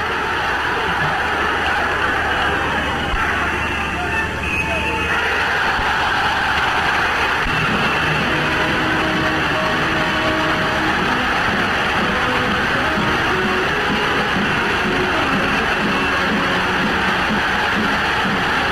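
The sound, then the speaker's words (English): A huge rally crowd roars and yells without pause, a loud, dense wall of cheering that never lets up, with higher shouts and whoops rising out of the din partway through. “I wanted to show you some of the crowds as I was researching the story, the incredible tapes of the crowds going crazy. The noise is deafening.”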